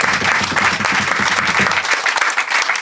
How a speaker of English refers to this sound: Big round of applause for expert Rich Pepiat.